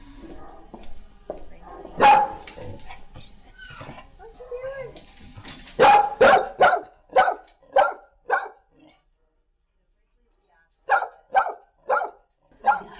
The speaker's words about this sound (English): Cage Brave. Once he's out of the cage, he's nothing like that. What kind of dog is he? It's like a Mastiff Great Dane mix.